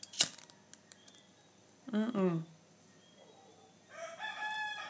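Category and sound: bird, rooster crowing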